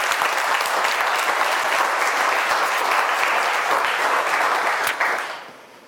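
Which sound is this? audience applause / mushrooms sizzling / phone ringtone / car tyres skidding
audience applause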